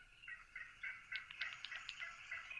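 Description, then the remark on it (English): A real wild turkey hen, played as a recording from an app, calls in a run of quick, raspy yelps, clear, with brief sharper notes toward the middle and no talking. “And then he's got the real sound. So here's a real hen.”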